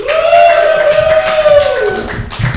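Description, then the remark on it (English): A live audience at a Robin Williams tribute comedy show claps and cheers in a dense, steady burst of applause, with a sustained whistle ringing over the crowd before it gradually fades. “Good, me too, I should also applaud.”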